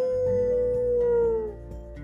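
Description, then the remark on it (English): A dog named Lucas lets out a single long, loud howl that holds a steady pitch, then slides downward and fades out after about a second and a half. “Lucas let out a big howl, but no response.”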